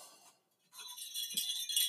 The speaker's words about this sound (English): Oh, we got jingle bells.